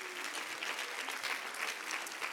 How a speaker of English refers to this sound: Clap your hands and give God praise right now.